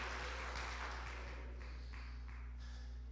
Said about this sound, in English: Come on, let's clap our hands together in the house of God today. Praise God.